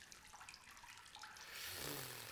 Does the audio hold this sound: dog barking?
no